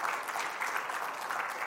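A church audience applauds to give God a hand, with steady, dense clapping that stays even in volume throughout, a broad crackling wash of many hands with no voices standing out.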